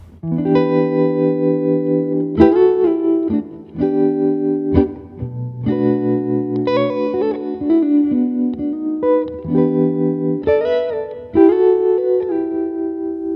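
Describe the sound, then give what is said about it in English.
Sustained electric guitar chords ring out through a new Fender tremolo and reverb pedal, changing every couple of seconds with a spacious, washed tail, played alone at a steady moderate volume with no talking. “These are. New Fender. This treverb is so sweet.”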